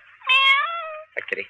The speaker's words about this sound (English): Kitty. Sleepy kitty. Cat doesn't seem to like me. Goes right out the window.